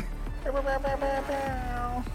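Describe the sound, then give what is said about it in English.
A short burst of loud music, a clip of a musician's music, with wavering, sliding tones, ending in a whiny, meow-like squeal that trails off. The sound is fairly loud. “It's like a little like scream at the end, like meow, meow.”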